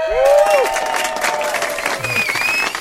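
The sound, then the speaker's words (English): A small crowd at Barrel 239 cheers and claps loudly and steadily, with whoops and high whistles rising above the dense wash of applause. “So get loud for me one more time.”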